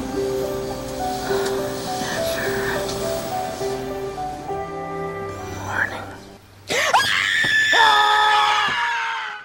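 A woman, Drew Barrymore's amnesiac character in the film 50 First Dates, lets out loud, piercing screams with wavering pitch, bursting in near the end after a stretch of busy, tonal background sound.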